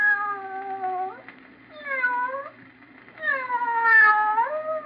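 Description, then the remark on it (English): A cat meows three times in a row in a sound effect, drawn-out, wavering cries with a whiny, plaintive tone, the last one longest and loudest, with no talking. “Just a sound effect. But in your imagination, didn't you picture a cat meowing?”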